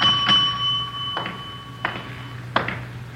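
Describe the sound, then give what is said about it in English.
A front desk bell at the unattended desk of the Sunflower Hotel, 433 Banyan Street, gives a bright ding that rings on with a sustained metallic tone, followed by three more sharp, evenly spaced taps. There is no talking, just a faint low hum underneath. “Nobody at the desk. I'll ring the bell.”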